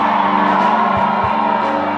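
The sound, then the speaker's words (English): An audience shouting in praise, a dense, loud wall of many overlapping voices that holds steady and unbroken throughout, with no single speaker standing out. “I say in the name of Jesus, as you are shouting, God is shifting things.”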